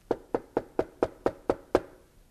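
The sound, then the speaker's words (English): Eight quick, evenly spaced knocks on a door, each a dull wooden thud with a short decay, delivered in a steady rhythm with no voices. “So one day he hears this at his door.”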